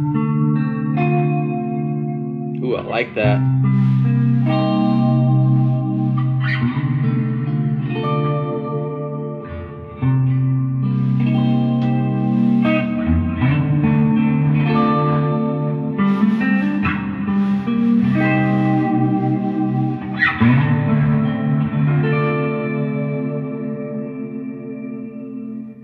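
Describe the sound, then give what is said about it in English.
Guitar chords played through a chorus and reverb pedal ring out with a shimmering, warbling wash, each strum blooming into long, lush tails; a voice briefly reacts over the playing. “Things, so it's like, let's see, like a little bit of chorus on your reverb.”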